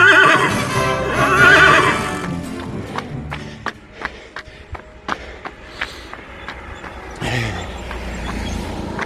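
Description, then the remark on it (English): A horse whinnies loudly and shrilly for a couple of seconds, followed by a string of sharp, irregular hoof clops, then another rough, breathy neigh near the end. “Can you see the horses?”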